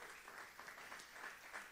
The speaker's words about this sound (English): Somebody say amen. Amen. Let's give the Lord a hand clap of praise right there.